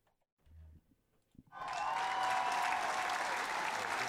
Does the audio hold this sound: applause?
yes